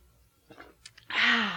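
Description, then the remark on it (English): A few soft, wet mouth sounds like sips and swallows of a drink being chugged, then a sudden loud, breathy exhale with a voiced rasp, as after a big gulp. “Okay, one more sip and I can tell you. All right, let's all chug.”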